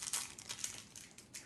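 A Jolly Rancher hard candy wrapper crinkles as it's opened, with a quick burst of crisp, bright crackles and rustles that flutter irregularly and stay fairly soft throughout, with no talking.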